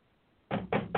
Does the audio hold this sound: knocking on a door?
yes